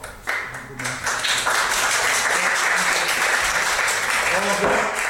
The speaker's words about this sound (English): There will be no applause from the public gallery. That is simply not permitted, and I'm sorry, it will not happen again.